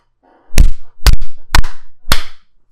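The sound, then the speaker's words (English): Two people clap their hands together in four loud, sharp claps, roughly half a second apart, a couple of them slightly doubled where the hands don't land in sync. No one speaks. “Just to clap together.”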